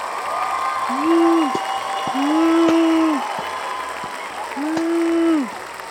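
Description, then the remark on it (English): Canned soundboard applause and cheering, a steady wash of clapping with several drawn-out 'woo' shouts rising and falling over it, fairly loud throughout the six seconds. “I don't like soundboards.”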